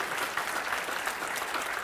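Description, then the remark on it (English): A church audience claps steadily in praise of the Lord, a dense wash of many hands applauding together at an even, sustained level with no voices standing out. “You need to clap your hands again.”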